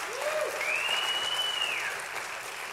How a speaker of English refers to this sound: 36% growth at Fair Hill. You can clap for that. You can clap for that.